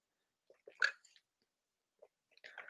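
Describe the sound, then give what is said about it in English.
Someone sips water: a few soft, wet mouth clicks and gulping swallows in short bursts separated by brief pauses, with no talking. “So I'm going to take a drink of water to clear my throat.”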